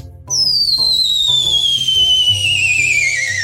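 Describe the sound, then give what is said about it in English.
A loud, piercing human whistle starts abruptly and holds for about three seconds, gliding steadily downward in pitch, over a low rumbling background. “that's …'s famous whistle”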